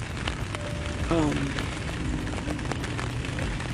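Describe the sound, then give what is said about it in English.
Steady rain falls with a dense, even hiss and scattered drop taps throughout. A brief faint tonal sound rises partway through. “Rain's nice, that's for sure.”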